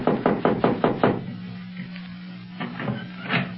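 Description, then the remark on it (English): Firm knocking on a door on a dimly lit floor of a building: a quick run of about five raps, a pause, then a few more knocks over a low steady hum. “I'd hate to knock and have an Arab open the door and start jabbering Arabian at us.”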